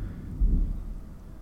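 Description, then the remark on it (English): A low, rumbling roll of thunder swells and lingers, deep and heavy against a steady background hiss that could be rain, with no voices present. “That is some rolling freaking thunder.”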